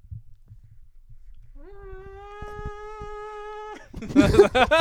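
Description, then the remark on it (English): A voice imitates a vacuum cleaner with a steady, droning hum that swells slightly at the start and holds an even pitch for about two seconds, then breaks into a louder burst of vocal noise. “Yeah, if anybody didn't know, that was supposed to be a vacuum.”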